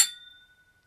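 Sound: glasses clinking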